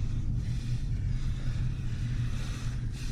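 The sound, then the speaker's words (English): A steady engine rumble from a moving BMW car, a continuous low drone with a faint hiss of road noise over it and no one speaking. “Now, don't get any heroic ideas about throwing the car around.”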